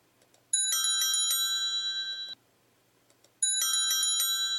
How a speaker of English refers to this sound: You know, when you go to a bar and the last drink and the bell rings kind of thing, for the last drink orders? Well, this is the last call orders.